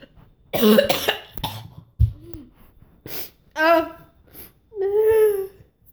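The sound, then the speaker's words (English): A person coughs harshly a few times, then lets out wavering, sobbing wails that imitate crying, with short pauses between the outbursts. “I'm crying and coughing. This is a horrible mix.”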